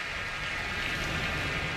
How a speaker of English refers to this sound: And Trey Maddox getting a well-deserved round of applause from the crowd here at Oracle.